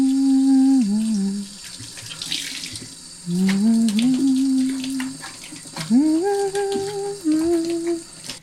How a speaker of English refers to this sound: I've been saving up all the bottles and the big pots that I own, and I've been filling them with water from the bathtub.